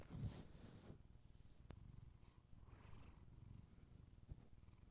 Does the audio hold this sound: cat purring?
yes